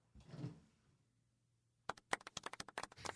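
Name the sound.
applause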